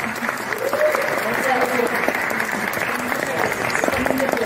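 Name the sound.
studio audience applause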